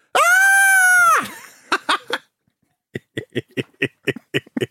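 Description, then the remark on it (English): A person performs a loud, sustained, shrill scary scream for about a second, then after a pause breaks into a rapid run of staccato, cackling evil laugh bursts. “Do some evil laughs and screams to go on. I can't scream like that, can I?”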